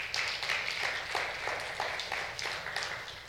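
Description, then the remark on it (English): A large church audience applauds steadily to cheer on fellow believers, many hands clapping in a dense, even roar with faint rhythmic pulses running through it, sustained at a fairly constant loudness with no talking. “How many of us could cheer them on and say, good job.”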